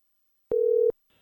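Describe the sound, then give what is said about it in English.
A single steady electronic tone of a phone line ringing on the caller's end while a call is being placed, lasting under half a second with a click at each edge, then faint line hiss. No one speaks. “We're trying to get Libby on the phone here. Rick, when she picks up, she's not going to know you're on the phone.”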